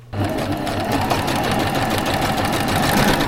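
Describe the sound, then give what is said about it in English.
A skin sewing machine runs steadily, its motor whirring with a fast, even mechanical chatter of the needle that starts abruptly and holds at a constant, fairly loud level throughout. “In 2013, Sea Alaska Heritage Institute flew Jeremiah to Juneau for SHI's three-day workshop on how to use a skin sewing machine.”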